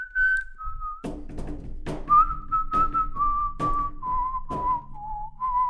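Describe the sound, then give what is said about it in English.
Someone whistles a tune, holding long, clear notes that step gradually downward, while a steady rhythmic thumping beat plays underneath. No one speaks. “I could do a whole, like, tell me a song by both now, and I could whistle it.”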